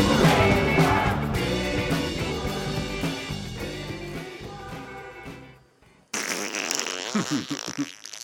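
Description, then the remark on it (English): Music plays and fades out, then a loud, wobbly fake fart sound made with the mouth buzzes for about two seconds, with no talking. “That was my mouth making a fake fart.”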